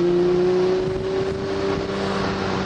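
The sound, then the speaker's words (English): Motorcycle engines drone loudly and steadily as motorcycles head up the mountain road to Palomar Mountain, a continuous buzzing hum with a sustained tone that holds at a fairly even pitch throughout, with no voices. “Some motorcycles heading up.”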